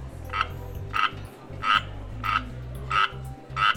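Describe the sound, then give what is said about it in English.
A northern leopard frog calls in a steady series of about six short, raspy croaking bursts, evenly spaced, over a low, continuous rumble in the background. “First, let's hop on over to see the looks the northern leopard frog has for us this season.”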